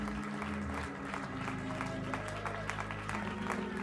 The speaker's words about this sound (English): One more time, can you begin to pray and ask God, bless him and clap your hands and worship him this morning?